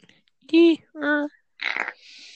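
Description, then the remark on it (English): A mouth imitating a fart: a few short, buzzy, wet-sounding blasts, trailing off into a breathy hiss. “She just farted. No, that was me. That was my mouth.”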